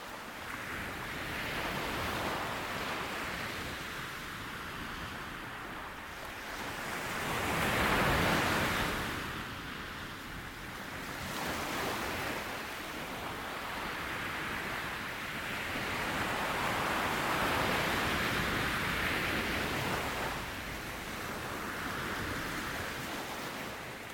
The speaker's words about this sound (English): the ocean is playing our favorite hit called The Ocean. Let's listen.